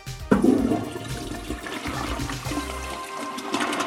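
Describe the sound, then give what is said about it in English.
A low-flow toilet, using no more than 1.6 gallons per flush, flushes with a sudden rush of water that swirls and drains steadily for a few seconds, fairly loud, with no voices present. “For toilets, no more than 1.6 gallons per flush.”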